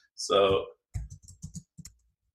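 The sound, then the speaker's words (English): A short voiced sound opens, then a quick run of uneven taps on a computer keyboard, about half a dozen clicks in a second before falling silent. “Go for it while I'm typing this stuff.”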